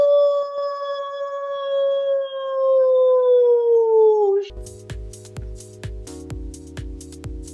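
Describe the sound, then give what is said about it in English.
A human voice imitates a wolf, holding one long, loud howl that slowly slides downward for about four seconds before cutting off as rhythmic, beat-driven music begins. “So I'll do a little wolf howling for you”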